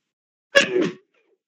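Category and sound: human body sound, sneeze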